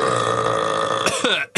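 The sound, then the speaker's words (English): A loud burp drawn out for over a second, rough and croaky with a buzzing tone, ending in a brief gulping catch before cutting off. “Oh, I got a burp.”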